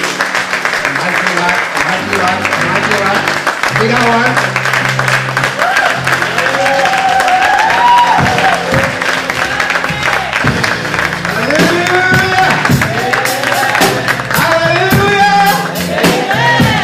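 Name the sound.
audience clapping and cheering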